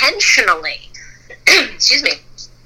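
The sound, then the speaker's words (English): A loud sneeze bursts out, followed by a second sharp sneeze-like burst about a second later, with faint voiced sounds between them and a soft hum underneath. “I bless you.”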